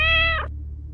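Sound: cat meowing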